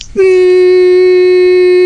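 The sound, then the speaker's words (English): A single voice holds one steady, buzzing tone for about two seconds, mimicking white noise, loud after a brief breathy onset. “That was me doing my impression of white noise.”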